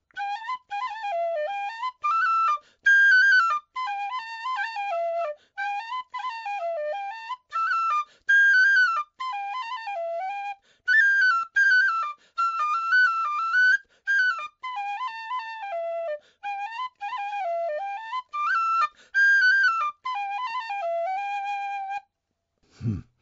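A tin whistle (penny whistle) plays a bright, lilting hornpipe melody solo, fairly loud, in repeating phrases with brief breath pauses, running for about twenty seconds before stopping abruptly.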